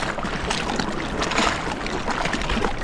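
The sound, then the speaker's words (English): Steady rushing of the Deschene Rapids on the Ottawa River, behind the water purification plant at Britannia: a dense, continuous roar of churning water filling the whole clip at an even, moderate loudness with no pauses or voices. “You can hear in the background the Deschene Rapids just behind us chugging away, and this is right behind the water purification plant at Britannia.”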